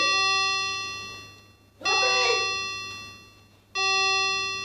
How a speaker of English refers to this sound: That's a clock.